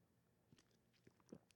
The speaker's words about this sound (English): I had to get a sip of water.